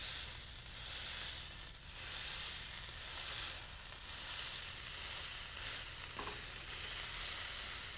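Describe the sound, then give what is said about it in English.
A seasoned beef patty sizzles steadily in a hot pan on a burner set to medium-low, a continuous crackling hiss that holds at an even level for the whole stretch, with no voices. “So we're just going to throw a patty on and listen to it sizzle.”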